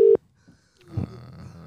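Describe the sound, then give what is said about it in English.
A loud, steady electronic ringback tone of an unanswered phone call sounds once briefly at the start, then cuts to near silence before a low rumble of background noise comes in. “This person's not trying to pick up as well.”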